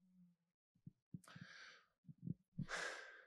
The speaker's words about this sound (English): See, I'm breathing hard again.